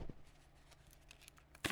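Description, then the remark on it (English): A Pringles can being opened: faint scratchy peeling sounds, then one sharp, loud pop-like burst near the end as the seal gives way. No one speaks. “But people know that is the sound of Pringles.”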